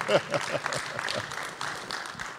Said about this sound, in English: South by Southwest, you should have me come do that talk next year, because you just heard all that clapping.